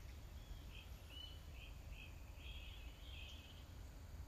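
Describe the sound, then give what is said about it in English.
Faint birds chirp, a string of short, repeated calls over a steady low outdoor rumble. No one is speaking. “You definitely hear the birds here, but also notice the sounds where you are.”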